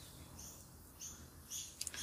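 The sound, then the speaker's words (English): Birds chirp and twitter at sunrise, around 6:29 a.m. on 17 January in Melbourne, Australia: a scattering of short high calls that grow busier toward the end, over a soft low background hum with no one talking. “The birds are still chirping and singing.”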